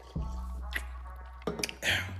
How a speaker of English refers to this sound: I'm going to take a sip of this Summer Edition Red Bull. I really shouldn't say it because they ain't paying me, but it is what it is.